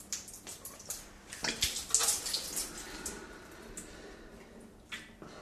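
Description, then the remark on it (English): Nasal rinse: water poured into one nostril runs through the sinuses and out the other nostril, trickling and splashing irregularly into a basin, with wet sniffling and squelching bursts near the middle, fairly quiet throughout. “So basically, I'm putting this point up into my nose, bending down, and the water should, in theory, go up, run through all my sinuses and come back down out the other nostril.”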